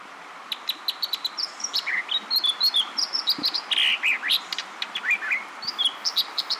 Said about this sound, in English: This brilliant song, ringing out over a rapidly rushing western stream, belongs to an American dipper.